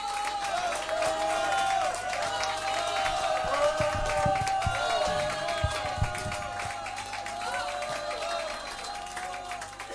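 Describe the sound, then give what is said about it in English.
A concert crowd at a gig applauds steadily, with scattered cheers and insistent shouts for more rising over the dense clapping, while a sustained tonal hum lingers beneath the noise. “Some very insistent voices shouting for more then, and I know if I'd have been at that gig, and I wish I had been at that gig, well, I would have been shouting for more as well.”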